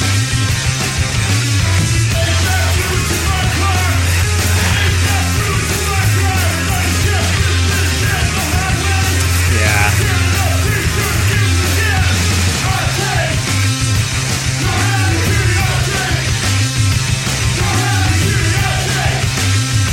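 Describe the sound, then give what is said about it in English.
Loud, dense heavy rock song by a band from Toronto, Ontario, with distorted guitars and pounding drums, a man's harsh screamed vocal shouting over the wall of noise throughout. “He's not even like scream singing. He's just screaming. Just straight up screaming.”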